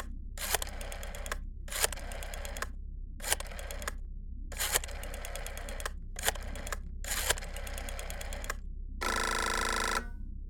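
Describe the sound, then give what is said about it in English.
A rotary phone dial is turned and released several times, each whirring, clicking return a different length, followed by a brief steady ring tone. No one speaks. “Let me dial this up here on this rotary phone that I have.”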